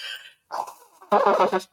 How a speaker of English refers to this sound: And that was me blowing my nose. What other podcast could you go on that you will hear the disgusting sounds of someone blowing their nose?